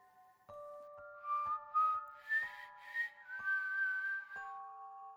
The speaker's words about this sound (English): A doll whistled from the house.